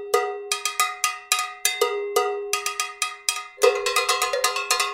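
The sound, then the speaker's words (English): Three people play cowbells in an interlocking polyrhythm, bright metallic strikes at a few different pitches tumbling over one another, growing denser and busier toward the end. No voices. “There's this video I found online of these three guys jamming on cowbells, and it's unbelievably fascinating.”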